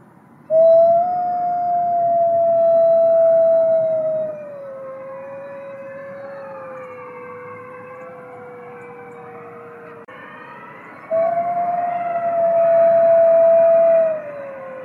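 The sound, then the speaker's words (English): A gray wolf howls in long, steady, slightly falling tones: a loud howl, then softer overlapping howls trailing underneath, then another strong howl. No one speaks. “And hear the sound of the gray wolf.”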